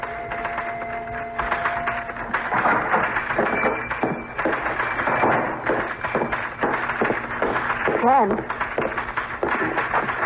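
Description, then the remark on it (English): Rapid, steady clatter of a typewriter being typed on as a newspaper story about the previous night's events is written, keystrokes striking in quick irregular bursts throughout, with a faint tonal hum in the background. “I'm beginning to feel jealous of that typewriter.”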